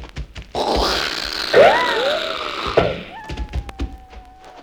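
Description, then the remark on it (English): An arrow strikes in tall jungle grass with a sharp, solid thunk, set within a rushing whoosh and a falling whine. A second lighter impact follows, then a thin, steady high tone lingers. No one speaks. “It sounded like an arrow.”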